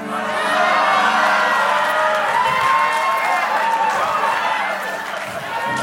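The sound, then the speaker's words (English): A large audience boos loudly at a mention of Seagulls fans, a dense, sustained roar of many voices that holds steady for several seconds before easing off slightly at the end. “Listen, you can boo, you can get upset, but the prophets are in the room.”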